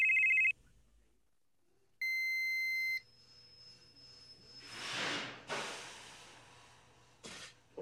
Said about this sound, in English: Phone rings. Phone rings. Phone rings. Phone rings.